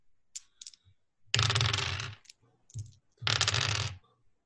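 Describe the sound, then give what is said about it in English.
Two bursts of dice clattering and tumbling across a hard table, rolled for a strength roll with a bonus die, each about a second long and fairly loud, with a few small clicks before them and no talking. “Do a strength roll with a bonus dice.”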